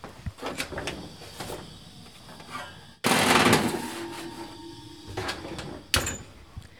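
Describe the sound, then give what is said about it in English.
An oven door opens with a sudden whoosh and steady rushing hiss, followed by soft rattles and a sharp metallic clunk as a pan of oats and nuts coated in syrup and oil, shaken to an even layer, is set inside. “You're going to want to kind of shake it down to an even layer and then put it in the oven.”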